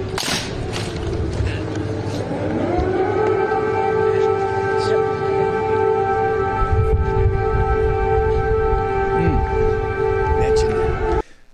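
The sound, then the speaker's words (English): An air raid siren in Kyiv winds up over a couple of seconds, then holds a loud, steady, droning wail for several seconds over rumbling background noise before cutting off abruptly. “We got, just coincidentally, air raid sirens going on.”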